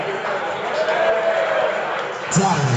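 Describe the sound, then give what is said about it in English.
Steady crowd noise from an audience clapping and cheering, a dense wash of sound that holds throughout and swells slightly near the end. “You can keep clapping every time he says it.”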